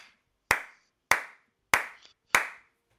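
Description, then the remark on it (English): Four slow, evenly spaced hand claps given as a round of applause for the summer, sharp, each one crisp with a short decay, with silence between them and no voices. “Let's give a round of applause for the summer.”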